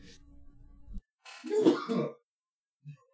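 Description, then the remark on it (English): A single loud sneeze bursts out about midway, lasting under a second, after a stretch of low background rumble; a faint short thump follows shortly after. “Bless you.”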